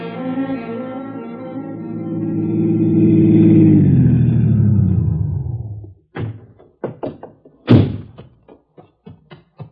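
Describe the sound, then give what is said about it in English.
A low droning rumble winds down and cuts off, followed by a series of sharp knocks on a door, irregular, with one especially heavy thump among them. “Yes, how'd you knock?”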